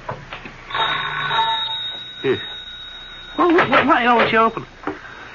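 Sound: doorbell ringing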